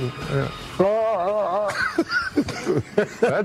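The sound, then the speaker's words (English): A person imitates a hawk's cry with a loud, wavering, strained screech lasting about a second, then goes on talking in choppy bursts. “That's more like a wounded hawk.”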